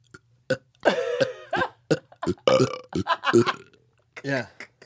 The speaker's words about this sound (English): I could burp on command. Do it. I don't want to, but I could. I can do it too. That was my first superpower.